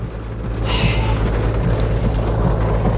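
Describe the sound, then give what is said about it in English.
The engine of a car parked in a gym parking lot idles steadily in the rain, a constant low rumbling hum that never changes pitch, layered under a broad, even hiss throughout. “Well, I guess we'll just sit here and waste fucking gas.”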